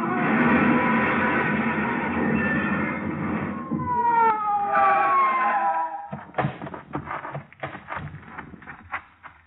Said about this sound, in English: Whoever it was paid no attention to our siren, but we pulled closer, hugging the curves by using the whole road.